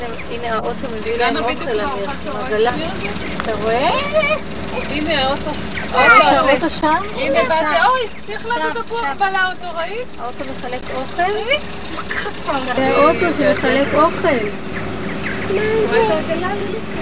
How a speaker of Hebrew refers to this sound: הנה האוטו מביא לנו אוכל.